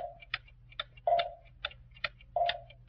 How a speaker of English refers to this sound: I used to work in a clock factory putting tick-tocks in clocks. In the small ones, I didn't use any tocks, just ticks. In the medium-sized clocks, I used tick-tocks. And in the big ones, I only used tocks.